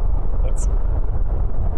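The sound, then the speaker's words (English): Storm wind howls outside at the worst of the storm in a steady, loud, low rumble that barely lets up, with a brief high-pitched whistle rising over it about halfway through. “The storm's hit, and I think we're going through the worst of it. The howling outside.”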